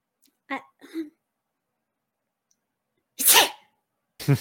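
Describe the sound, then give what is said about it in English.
Two short, catching breaths, a tense pause, then one loud sneeze bursts out; another sharp burst starts right at the end. “Bless you.”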